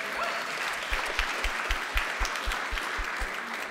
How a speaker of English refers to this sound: Somebody is going to join the family of God. Yeah, we can clap. That's great.